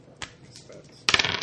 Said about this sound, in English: you need to roll 2 more dice.